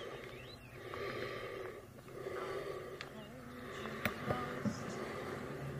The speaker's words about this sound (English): Is that Vader? No, it's him breathing inside the mask, but that's the same sound we get at the very end of the movie that was released last year after the credits.